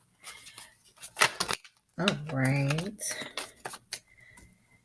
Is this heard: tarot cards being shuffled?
yes